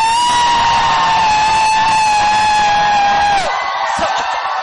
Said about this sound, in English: So let me see whether you can shout, jump, and scream at the same time. 1, 2, 3.